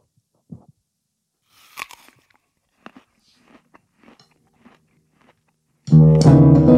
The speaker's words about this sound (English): So this is me playing that with a Gordita Crunch.